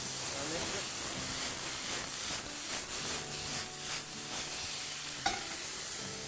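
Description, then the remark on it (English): A steady, hissing sizzle of soy sauce in a hot pan, with the soft scraping rhythm of a whisk stirring it in and one sharp click near the end. “So we're just going to add a small bit of soy sauce to this.”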